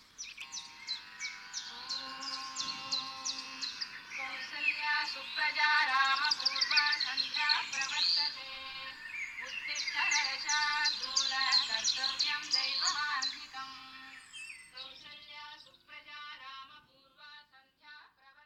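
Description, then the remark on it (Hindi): A lively chorus of birds chirps and tweets continuously, with rapid, overlapping high calls that swell and fade, thinning to sparser twitters near the end. A faint low hum sits underneath. “वही लहरों का शोर, वही फिल्टर कॉफी, वही चिड़ियों का चहचहाना, वही आसमान, वही रोज का दिन, बस कुछ तो अलग सा था।”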